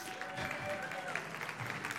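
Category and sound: crowd, audience applauding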